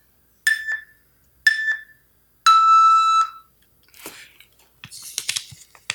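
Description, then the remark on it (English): Game timer beeps marking the end of a one-minute round for answering a card: two short, bright electronic beeps a second apart, then one longer sustained tone, followed by some soft scraping and clattering noise. The beeps sound clear. “You will have beeps as we go that will tell you when we're done.”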